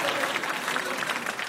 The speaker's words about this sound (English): Clap it up for him.